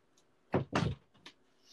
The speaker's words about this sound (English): What was that loud thud? My door? My door doesn't open and close. You literally have to rip it open and kick it down.